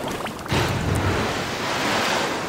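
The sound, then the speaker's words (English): Large, foamy ocean waves splash and churn in a loud, continuous rushing wash, the surge swelling sharply after a brief moment and staying heavy throughout, with no voices. “Not only was it too deep, but the foamy waves also made it impossible to see under the water.”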